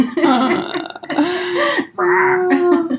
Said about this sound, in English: I'm grateful to, excuse me, throat burp.